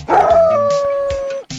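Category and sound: animal, dog barking and howling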